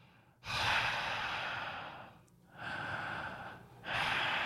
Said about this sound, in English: Oh, well, but can we do some breathing exercises or something before? Yes.